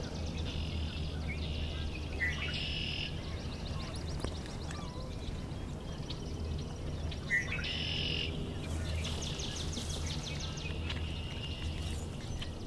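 Several swamp sparrows sing repeated trilled songs, a steady mechanical rattle of notes coming in bursts from more than one bird, over a constant low background rumble.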